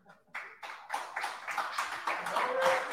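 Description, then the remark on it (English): A crowd breaks into applause that starts sparse and quickly swells into a dense, steady wash of clapping, holding at a moderate level for a few seconds. “Hey, I need a bigger applause than that.”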